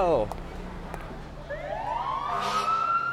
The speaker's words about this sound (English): We only turn on the siren when we're going to a fire.